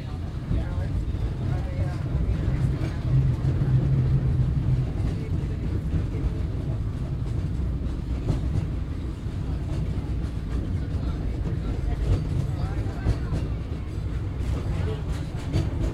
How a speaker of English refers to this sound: Folks, on behalf of the fireman, the engineer, the front conductor, myself, welcome aboard Holiday 5 of the Disneyland Railroad. At this time, we're currently making our way to Mickey's Toontown Depot.